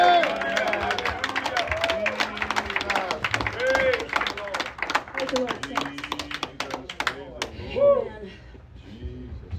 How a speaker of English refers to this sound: And let everybody say amen and give the Lord a hand clap.